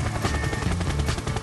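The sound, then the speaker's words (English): A helicopter roars loudly overhead, its rotor thumping in a rapid, steady chop over a dense rumbling drone, with no voices present. “At the same time, this damn helicopter keeps following me.”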